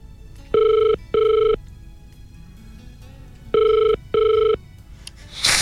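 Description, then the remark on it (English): Two pairs of electronic ringback tones, each a double burst, separated by a pause of quiet line hiss, from an outgoing phone call waiting to be answered. “Let's phone KFM's number. Let's see what happens when they put us on hold.”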